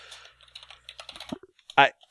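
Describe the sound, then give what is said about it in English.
Rapid, frantic clicking of keys on a computer keyboard, a quick irregular flurry of taps, ending with a short loud vocal burst. “The sound of furious typing.”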